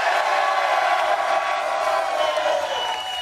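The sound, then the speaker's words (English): A large live audience in AZ (Arizona) roars and cheers continuously, a dense wash of shouting voices and whoops holding at a steady loud level for the whole stretch. “The crowd is crazy. Go crazy.”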